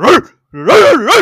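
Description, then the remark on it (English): A pit bull dog barks loudly: one short, sharp bark, a brief pause, then a longer run of wavering, whiny barks that rise and fall in pitch. “Hey, what kind of breed of dog was that? Pit bull.”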